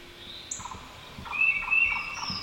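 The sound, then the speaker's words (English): A bird calls loudly in a forest sounds recording played on an Alexa smart speaker, with a repeated rapid series of sharp, gobbling notes over a soft background hiss of woodland sound. “Oh, that bird's gonna be a bit unrelaxing.”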